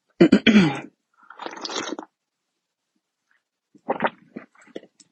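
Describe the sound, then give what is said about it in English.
Sips of tea from a cup: a sharp slurp, a softer airy draw, then after a pause a few small swallowing and mouth sounds. No one talks. “I'm going to take a sip of my tea.”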